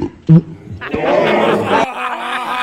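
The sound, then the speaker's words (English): A burp and a fart at the same moment, slowed down: a brief loud low thump, then a long, deep, rumbling groan with a raspy texture that cuts off abruptly. “Yeah, but who hasn't burped and farted at the same time?”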